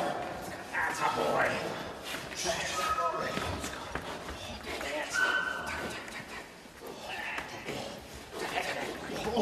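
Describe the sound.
A dog barks and yips in repeated excited bursts with occasional whimpers during protection training, continuous over a busy background where voices can be heard.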